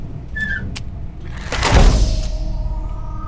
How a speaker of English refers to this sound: It is once we seal the door. Which we should probably do about now. Yeah, agreed. Help me with this, will you?